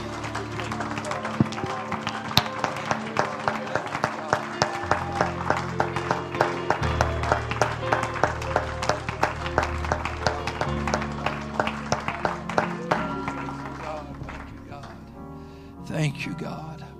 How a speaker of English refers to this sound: Thank you, Lord. Could you give Him a hand clap and just a shout of praise tonight? Hallelujah.